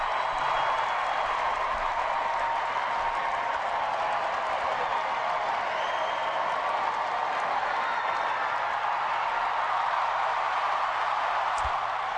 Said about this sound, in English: That was Michelle waving to the crowd that brought the roar.